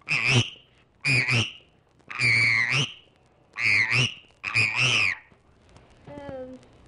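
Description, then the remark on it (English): A frog croaks five times in loud, raspy bursts, each lasting around half a second with brief pauses between, followed by a faint, thin chirp at the end. “This one's a frog.”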